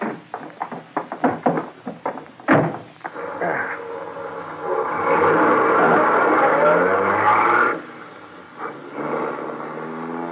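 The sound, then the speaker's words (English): A Rolls-Royce town car's engine starts at the curb with a few rough bursts, then revs up and holds a steady, loud drone as the car pulls away, easing off near the end. “A Rolls-Royce town car waited at the curb.”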